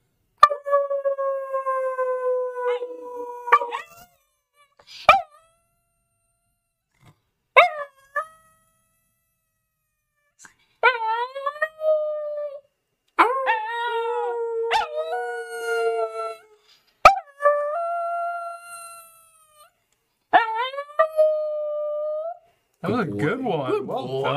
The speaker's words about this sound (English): Should we make him howl? You want to do the awoo? Let's do the awoo. You gotta do it with me to make him do it.